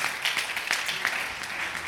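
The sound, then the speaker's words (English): A church audience claps their hands together to praise the Lord during a sermon, a dense, steady crackle of applause that holds at an even, moderate level for about two seconds, with no voices standing out. “Would you clap your hands and praise him again?”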